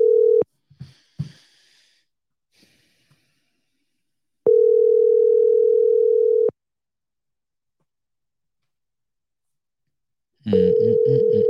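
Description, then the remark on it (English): A phone line ringback tone while calling a number listed in Livermore: steady electronic burr pulses lasting about two seconds, separated by long silent gaps, with a few faint clicks before the rings resume. No one talks. “We'll just call Sousa and find out what they were.”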